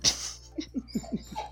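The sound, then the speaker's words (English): A dog makes a quick snorting huff, then a rapid run of five or six short, high whimpering yips in a steady rhythm, fairly quiet over a low background hum. “oh my god, now this dog is just tearing me up.”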